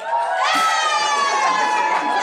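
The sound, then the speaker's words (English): A live crowd cheers loudly and continuously for a couple of seconds to vote on which of two people standing back to back is taller, a dense wash of shouts and high-pitched whoops from many voices, steady throughout. “I feel like some cheered twice to be nice. There was like some supportive cheers.”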